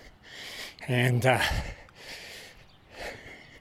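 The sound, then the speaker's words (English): Heavy, labored breathing after running two laps of a track in Kingston: a run of loud, airy breaths in a slow rhythm, with one voiced, strained gasp partway through, like someone winded from exertion. “And you can hear I'm breathing heavier.”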